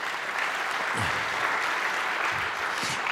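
A crowd applauds steadily to welcome an invited speaker, a dense, even wash of clapping that stays loud and unbroken throughout, with no voices rising above it.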